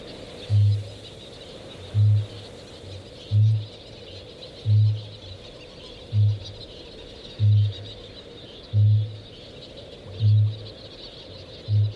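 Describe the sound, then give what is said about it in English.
Deep, resonant booms of a male kākāpō repeat about every second and a half, nine low thuds in a steady rhythm over a constant hiss of insects or night ambience. “Kākāpō, the booming of the male kākāpō is a little bit like the heartbeat of the land.”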